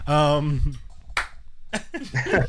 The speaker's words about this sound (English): I expected three claps.